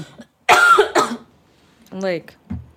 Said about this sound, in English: Please edit this out because nobody wants to hear the whooping cough.